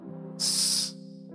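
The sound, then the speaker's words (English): A person imitates a snake's hiss, one sharp, breathy burst lasting about half a second that trails off quickly, over a steady low humming tone in the background. “The next time you hear, that's a snake.”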